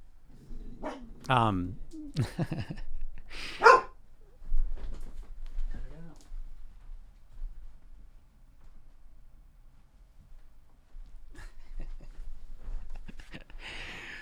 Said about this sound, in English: This dog's so crazy. She's a random barker, I would say. She's a random barker, just out of nowhere, just barking like crazy.